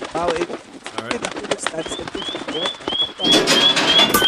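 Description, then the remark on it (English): Muffled cooing from birds nesting in a mailbox, disturbed by someone walking over to it, mixed with a steady series of short, bright chirps repeating every half second or so, growing slightly louder and busier toward the end. “All the birds going crazy, sort of muffled.”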